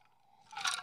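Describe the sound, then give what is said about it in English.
A quick sip of orzo, a Greek drink: a brief, soft slurping hiss rises after a near-silent moment and fades just as it ends, with no talking. “Need to take a sip.”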